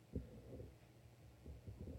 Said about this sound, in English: Heartbeat thumping lightly.